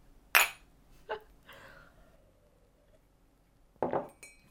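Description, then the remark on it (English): Ceramic mugs clink together in a toast, a sharp bright knock followed by a couple of lighter taps, then another clink moments later, with no talking. “Should we do a mug's cheers for like B-roll?”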